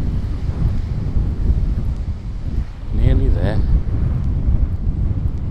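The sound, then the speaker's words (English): Steady wind buffets the microphone, producing a loud, continuous low rumble throughout, with a person speaking briefly partway through over the gusty roar. “I shall sit down by the temporary sea pump and take in the breeze and be glad that I'm not bald.”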